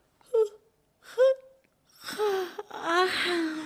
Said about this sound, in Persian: شازده کوچولو یک قدم کوچک برداشت، اما از بس سیاره کوچک و قبای پادشاه بزرگ بود جایی برای نشستن پیدا نکرد. پس همونجا سر پا ایستاد و از شدت خستگی خمیازه ای کشید.